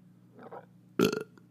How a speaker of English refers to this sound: You could hear that. If you crank it, you can hear that burp like coming up from the bottom. It just kind of moves its way up my fucking belly.